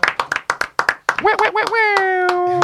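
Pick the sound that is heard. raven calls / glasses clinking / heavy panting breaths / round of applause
round of applause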